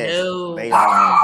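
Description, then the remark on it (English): A dog barks in a single drawn-out, tonal vocalization that rises in pitch and intensity partway through, loud and clear with no other sounds around it. “The dog said it. Okay, the dog like cut that.”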